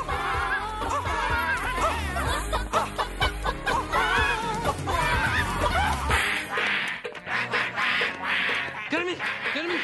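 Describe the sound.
Dense, squawky cartoonish voices of chickens and suited penguins clucking and quacking over a music backing instead of singing lyrics. The chorus pushes loudly throughout before thinning slightly near the end, mimicking a song's melody.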